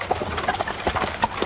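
Hooves of horses pulling a wagon clip-clop at an unhurried pace as the horses slow down, a handful of sharp hollow knocks in an uneven rhythm, moderately loud with no voices.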